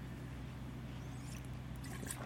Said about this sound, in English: Okay, hold on, let me take a sip of my soda riser.